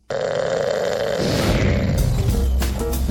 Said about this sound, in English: That was snoring that you heard.